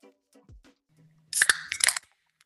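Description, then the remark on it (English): A beer can cracks open with a sharp metallic snap and a burst of hissing fizz lasting under a second, a second click in the middle, after a few faint handling taps. “That was a good crack.”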